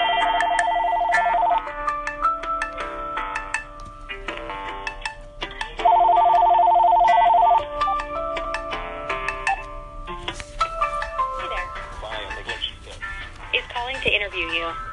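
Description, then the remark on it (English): A phone ringing tone from an outgoing call being connected for a recorded interview sounds in two steady bursts, a few seconds apart, over a busy layer of background music that carries on throughout. “I just played for you what an experience would be like if you sent a call out to a phone”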